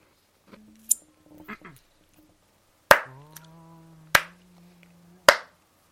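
Three sharp hand claps land about a second apart, in time with a sustained, low sung note of a song, with a few softer snaps and a brief hummed tone before them.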